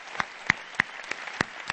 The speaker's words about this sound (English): Okay, let's clap our hands, everybody. Let's clap.